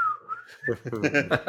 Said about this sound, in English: So be prepared, fans. You're gonna have more slide whistle than you've ever experienced.